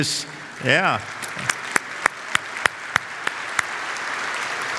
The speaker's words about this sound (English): I can assure you they've earned it, your applause, so grateful.